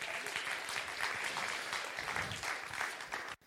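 A crowd applauds steadily, a dense wash of many hands clapping at a sustained, fairly loud level, ending abruptly after about three seconds.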